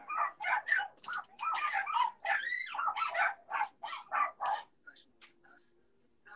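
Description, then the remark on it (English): Dogs bark and yap in a rapid, overlapping flurry for several seconds, fairly loud, then trail off into a few scattered, fainter yips. “Dogs, you can take over the podcast.”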